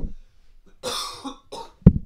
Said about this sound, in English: So that's kind of a tangent question, and I'm going to cough.